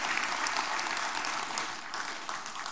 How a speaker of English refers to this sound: how many of you got a little bit of faith that America can do it? That's the time to clap. Even though you may not feel it, it's time to believe it.